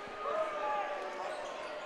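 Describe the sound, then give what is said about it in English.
Steady, soft thuds of a basketball being dribbled by a Lexington player running the clock in a game against Ashland, partly buried under a loud, constant crowd roar with a few high squeaks. “And A.J. again will settle the basketball.”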